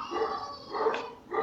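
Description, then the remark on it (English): Dogs barking in three short, evenly spaced bursts, a bit muffled and moderately quiet, with no talking over them. “And get the dogs out of there.”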